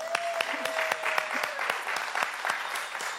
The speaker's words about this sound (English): Can I just applaud you right now?